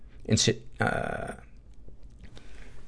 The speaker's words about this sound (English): excuse me. That was a swallowed wrong, not a getting sick cough.